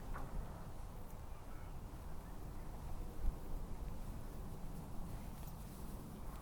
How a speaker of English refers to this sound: In the background, that's the last of the rush hour traffic on the M40.